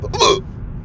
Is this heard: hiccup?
yes